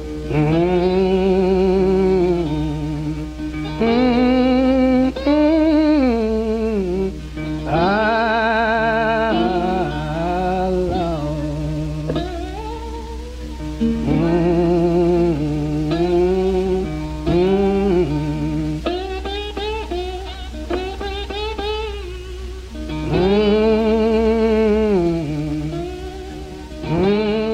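Old 1927 blues recording of slide guitar playing a haunting melody with wordless, moaning, murmured vocals; long notes glide up and down in slow, mournful phrases over a steady low hum and hiss.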